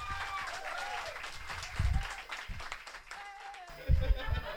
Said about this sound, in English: So everybody, all together, clap like fucking maniacs, please, for your headline act tonight,